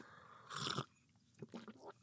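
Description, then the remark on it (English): A quick slurping sip of hot PG Tips tea, early in the day, about a third of a second long, followed by a few soft, faint mouth and swallowing noises. “Excuse me, I need to take a sip of some tea.”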